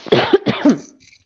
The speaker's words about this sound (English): Pardon, I have to cough a bit.